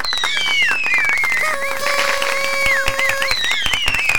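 A dense burst of crackling applause, many hands clapping at once, with shrill sliding whistles rising and falling over it for about four seconds, steady and fairly loud throughout.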